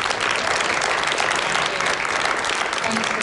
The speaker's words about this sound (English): So I just want everyone to join me in giving a massive round of applause, pool of applause for our cast.